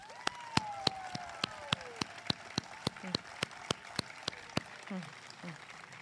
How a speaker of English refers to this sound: Students and parents, please join me in recognizing the CAH team with a round of applause.